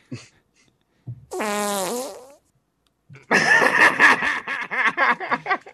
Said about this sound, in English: I take that to mean that the fart noises are coming through. Yes. Loud and clear.